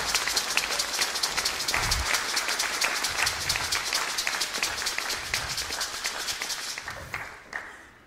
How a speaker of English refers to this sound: So could you massively just give him a real massive warm round of applause? Let's welcome him up to show our appreciation.